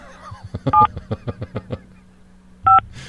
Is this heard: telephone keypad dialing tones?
yes